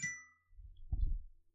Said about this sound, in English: Dare you let your phone ring so jingly on our commercial. That was beautiful.